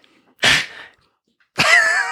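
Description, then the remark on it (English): A dog coughs twice, fairly loud: a short, harsh, breathy hack, then after a brief pause a longer rasping cough with a hoarse, wheezy tone. “One dog cough into the show.”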